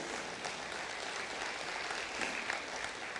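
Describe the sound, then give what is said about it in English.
An audience applauds in praise of Jesus during a sermon, a steady, dense wash of clapping that holds an even level for a few seconds, with no one speaking over it. “Can somebody give Jesus praise today?”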